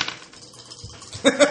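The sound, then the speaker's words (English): A man rolls dice across a hard tabletop, a light rattle of small clicks followed by two sharper, bright knocks as they settle, fairly quiet. “The man's rolling the dice.”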